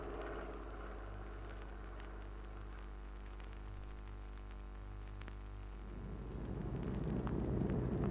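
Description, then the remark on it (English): A low, steady aircraft engine drone with layered harmonic hum swells into a louder, rougher roar over the last couple of seconds as it approaches overhead. No one speaks. “Pat, there's a kite coming. Isn't that the mosquito?”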